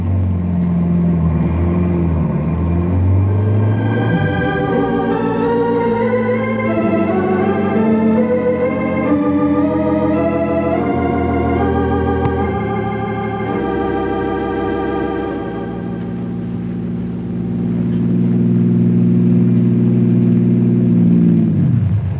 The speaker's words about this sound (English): drives the car a half mile down the road, turns around, and starts back toward the barricade.